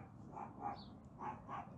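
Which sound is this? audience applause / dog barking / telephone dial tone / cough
dog barking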